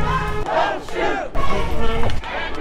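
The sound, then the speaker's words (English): A crowd of heated demonstrators in the streets of Elizabeth City at night, shouting together: a loud, dense roar of many raised voices with overlapping yells rising and falling continuously throughout. “If you look through the crowd of heated demonstrators tonight,”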